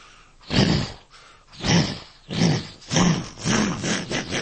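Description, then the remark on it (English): A voice imitates a train, puffing out about six breathy, voiced chugs that start slow and quicken into a steady rhythm, with no other talking. “I had to learn how to tap and we started this train sound.”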